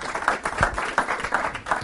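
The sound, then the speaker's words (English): An audience applauds warmly to welcome a speaker, a dense wash of many hands clapping steadily at moderate volume, with a few louder individual claps standing out in a regular rhythm. “I always recommend you don't clap before you hear me, actually, because you might not want to clap at the very end.”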